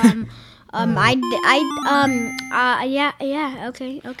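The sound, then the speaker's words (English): A phone's ringtone or alert chime sounds as steady electronic tones, partly masked by people talking loudly over it throughout. “My phone. Sorry, my phone.”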